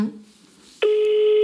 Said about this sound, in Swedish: Nu ringer vi.